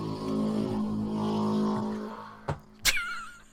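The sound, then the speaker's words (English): A loud motorcycle engine rumbles by on a street, its droning roar holding steady before fading, followed by two sharp bursts of noise near the end. “Loud motorcycle going down the street.”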